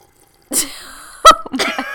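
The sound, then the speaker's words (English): A voice imitates a moray eel breathing water over its gills, ASMR-style: after a moment of silence, wet, gurgling mouth and throat noises come in several loud, sputtering bursts. “Like, this is a moray eel breathing.”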